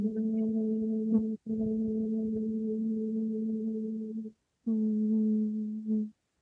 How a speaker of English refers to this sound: So it's just a gentle humming, and we're going to do this. I'm going to guide you to do this about 7 times.